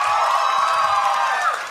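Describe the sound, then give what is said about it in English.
A live audience cheering and clapping in response to a question, a dense, steady wash of hands and voices with scattered whoops, holding loud throughout before easing slightly at the end. “Not one person didn't clap.”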